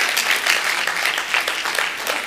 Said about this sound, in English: Now, why don't we give the Lord a hand clap for just keeping his eye on us today?